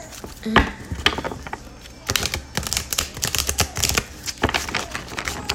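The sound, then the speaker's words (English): Busy clattering and flicking of cards being handled and shuffled, a quick irregular run of crisp taps and riffles with brief pauses, heard alone without talking. “Excuse me if the cards are loud.”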